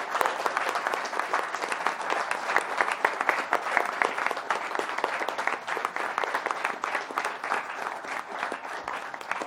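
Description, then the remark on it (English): Sustained applause from an audience at LaveCon 2016, a dense, even wash of many hands clapping at a steady loudness for the full length, with no voices standing out. “a big round of applause for all the work that she's done on LaveCon 2016.”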